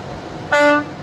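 The horn of a big dump truck carrying a Bobcat on the back gives one short, loud, steady blast with a brassy, multi-toned blare, rising abruptly out of a low background rumble and cutting off after about a third of a second.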